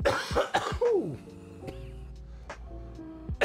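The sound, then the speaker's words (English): A quick run of harsh coughs after a dab hit of tangy, orange-flavoured concentrate, trailing into rough throat-clearing sounds, with a low steady hum beneath and another short cough burst at the end. “Nothing makes me cough like tangy.”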